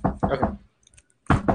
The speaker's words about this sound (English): I'll go ahead and knock on the door for you. We're gonna try this out.